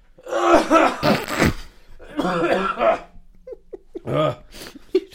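A close, loud fit of harsh coughing comes in two long bursts, followed by a few shorter, quieter coughs and sharp breaths trailing off.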